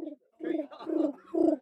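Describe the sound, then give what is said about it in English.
A person imitates a pigeon, giving three throaty, cooing calls in a steady rhythm, each rising and falling, moderately loud. “Can I hear your pigeon impression?”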